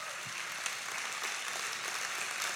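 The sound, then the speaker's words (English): An audience applauds those who have served as missionaries, many hands clapping in a dense, steady wash of crisp claps that holds at an even level throughout, with no voices heard over it. “Come on, give it up.”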